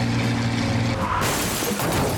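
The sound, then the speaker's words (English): A steady low engine drone of General Walton H. Walker's Jeep overtaking a column of trucks 10 miles outside Seoul gives way to a sudden, loud head-on collision with an oncoming truck: a violent crash of crunching metal and shattering glass that roars on as clattering debris through the end. “Another truck was coming the other way. The Jeep hit it head on.”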